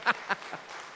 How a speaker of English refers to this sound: I always say these are the most tired people in our church, so give them just one more round of applause for that.